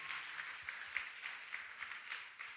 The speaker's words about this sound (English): Put your hands together and clap to the Lord. God bless you.